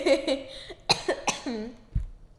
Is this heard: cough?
yes